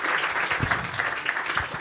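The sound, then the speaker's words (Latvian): A crowd claps steadily, a dense, continuous patter of applause at moderate loudness with no voices standing out, lasting the whole short moment, welcoming the next guest, a Riga Technical University (RTU) professor who is handed the microphone. “Lūdzu aplausu, reku mikrofons.”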